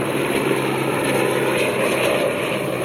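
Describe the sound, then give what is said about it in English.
A helicopter drones steadily overhead, its loud, continuous engine and rotor roar filling the scene without pause or voices. “Maybe that helicopter scared them all away.”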